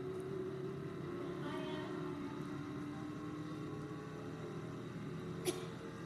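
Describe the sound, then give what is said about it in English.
The engine of a short track race car in a racing video game, at Richmond, roars steadily at a constant droning pitch throughout, loud, with a brief sharp click near the end and no voices. “This is some kind of short track car.”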